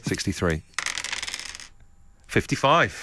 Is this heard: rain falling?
no